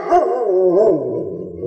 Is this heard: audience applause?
no